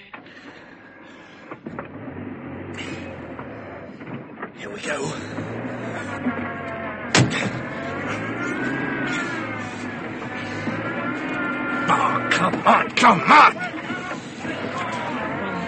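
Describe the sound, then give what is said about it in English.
A cold car engine labors and revs unevenly as the car is driven to crash through a gate, its pitch wavering and climbing in steady surges over a rough mechanical rumble, with a man's brief exclamation heard over the noise. “The engine's cold. Come on, you brute.”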